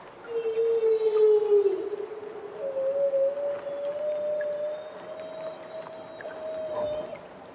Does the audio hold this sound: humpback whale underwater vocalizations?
yes